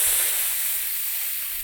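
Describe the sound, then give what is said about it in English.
A voice imitates a vacuum cleaner with a steady, breathy hiss that holds at an even loudness for under two seconds, bright and noisy without any words. “That was supposed to resemble a vacuum cleaner.”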